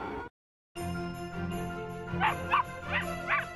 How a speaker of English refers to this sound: Dogs, they're coming. They're coming your way. They'll be here soon.